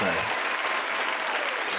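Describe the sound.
A steady round of applause from a small group, dense and even clapping that holds at a constant level throughout, with a brief hint of a voice at the very start.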